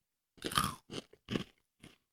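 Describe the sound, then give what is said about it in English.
Crisp crunching of peppermint toffee candy being bitten and chewed, four sharp bursts in an uneven rhythm with brief pauses, the first loudest, and no talking. “Oh, it's crunchy.”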